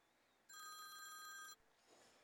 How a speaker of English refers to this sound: Oh, phone call's ringing. Here we go. One more ring.